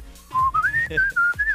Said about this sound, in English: You are a good whistler though. I am good, yeah.